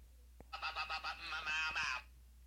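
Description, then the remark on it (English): A man's voice imitates a bird call: a quick run of nasal, honking squawks, about six pulses blurring into a longer warbling cry before stopping. “It says it has that guy doing, you know, the bird song, bird.”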